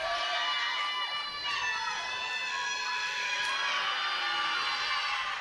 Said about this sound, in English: We got someone scream randomly from the crowd.